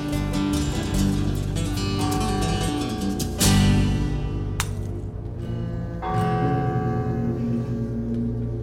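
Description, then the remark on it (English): A town clock bell in Lowhampton, New York, tolls several heavy strikes at midnight, each ringing tone swelling and lingering into the next so the sound stays a continuous, reverberant hum; no voices. “the reverberating sound of the town's clock striking midnight, all of a sudden makes the message of the preacher sink in.”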